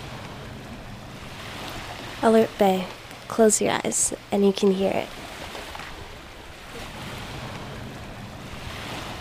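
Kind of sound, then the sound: nature, ocean waves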